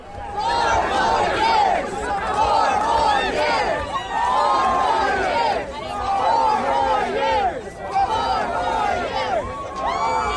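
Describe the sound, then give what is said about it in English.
A dense crowd at the Iowa State Fair, gathered as Donald Trump arrives, chatters and calls out, many overlapping voices forming a loud, continuous babble with occasional raised shouts rising above it and no pauses throughout. “And the mob scene, the crowd scene, it was just remarkable from the moment he stepped out of the limo.”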